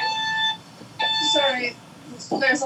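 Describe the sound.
An alarm beeps in two steady, high electronic tones, each about half a second long and fairly loud, while people talk over and between them.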